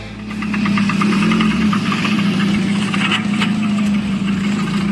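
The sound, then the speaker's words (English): A car engine runs steadily at idle with a rough, knocking rhythm and a low throbbing hum, loud, with no voices. “Hear those car sounds?”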